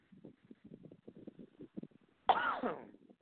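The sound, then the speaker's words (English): A run of short, muffled throat-clearing rasps and hacks leads into one loud, harsh cough, trailing off with a strained, wheezy tail. The person coughing does not smoke cigarettes. “All right, well, I cough up a lung and no, I do not smoke cigarettes.”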